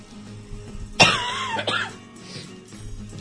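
A sharp cough bursts out, followed a moment later by a shorter rasping throat-clear, both loud and alone over a faint background hum.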